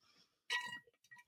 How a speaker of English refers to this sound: Let me take a drink of water really quick.